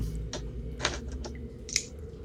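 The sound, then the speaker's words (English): A handful of dice being picked up and jostled, giving a few sharp plastic clicks and clatters at uneven intervals, fairly quiet over a low background hum, with no talking. “I've just got to pick up dice.”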